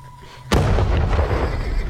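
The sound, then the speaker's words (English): A bomb detonation muffled by heavily falling snow: a single sudden, heavy boom that breaks a low hum and rolls into a loud, sustained rumble lasting to the end, with no voices. “In an instant, there was a terrible shock, a detonation muffled in the multitude of snowflakes.”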